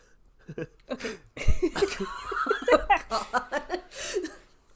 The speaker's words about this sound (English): As … ducks down, and it's kind of peeking over the side, he erupts into a fit of uncontrollable coughing.